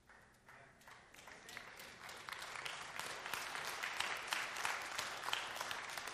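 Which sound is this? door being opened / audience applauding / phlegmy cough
audience applauding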